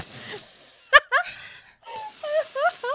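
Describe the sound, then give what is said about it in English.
A voice mimics frantic, deep gasping sniffs of a character trying to inhale as much of Alice's scent as possible: a sharp breathy inhale followed by a string of quick, squeaky snuffling breaths, fairly loud, with no words spoken. “She may have, because she is gasping to inhale as much of her as possible.”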